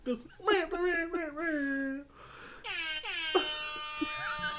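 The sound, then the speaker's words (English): A blaring air horn sounds in a couple of long, loud, brassy blasts, preceded by wavering whiny vocal sounds that resemble a voice mimicking the honk. “Just me fucking firing off an air horn in my house at like 11 at night.”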